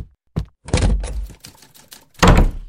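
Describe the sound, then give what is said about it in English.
A cane lands in a quick, uneven flurry of blunt thwacks against a man's head, about half a dozen heavy strikes with the loudest near the start and end, and no voices. “Oh, my head. You saw him attack me”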